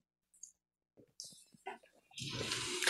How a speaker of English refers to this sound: So I'm taking my saucepan from the stove, and it said to let it slightly cool. So it's kind of like a cooled liquid that we're just going to now pour into the mixing bowl and just shake, shake, shake, get all the excess out.